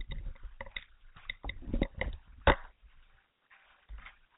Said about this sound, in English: Chewing my ice to stay hydrated, I tell you what. Oh, God's greatest gift to mankind. Well, second to women, but ice. Soft, chewable, ice.